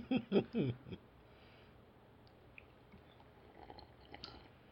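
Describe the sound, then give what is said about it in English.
Someone gulps down a drink of water, three quick loud swallows in the first second, followed by near silence with only faint background noise. “What you drinking there? Water.”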